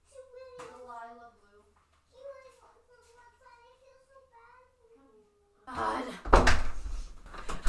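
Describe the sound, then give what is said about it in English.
A child's voice talks for several seconds, then a brief shuffle leads into a single loud thud of a door being shut near the end. “Shut the door”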